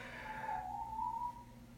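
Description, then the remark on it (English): A single long, steady whistle holds one fairly high pitch for about a second, wavering slightly before fading out, with a low background hum throughout and no talking. “Dramatic whistle to add effect.”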